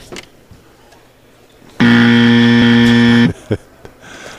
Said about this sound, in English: Bo Jackson's 40 was 4.5. Mark, do you have the buzzer?